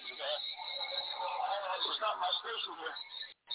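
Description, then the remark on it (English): A muffled, thin-sounding voice from a WSNR radio station broadcast with a hollow, echoing smear trailing behind it, playing steadily for a few seconds before briefly cutting out near the end. “Echoing is not my station because everything is down here normal. Why is it echoing so?”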